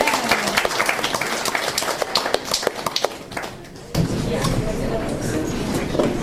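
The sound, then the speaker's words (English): An audience at the Queens Poetry Slam open mic applauds as the final open mic performer is welcomed to the stage, with dense, rapid clapping that stays loud for several seconds, then gives way to a steadier, washy crowd noise toward the end. “Keep clapping.”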